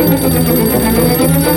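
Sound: telephone bell ringing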